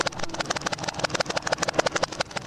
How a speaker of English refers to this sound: Here is someone typing in reverse. This is going to blow your mind.